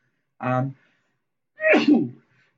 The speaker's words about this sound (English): and, of course, I sneeze. Excuse me.